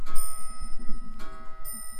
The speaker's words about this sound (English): Oh, fucking clocks, honestly, this is ridiculous.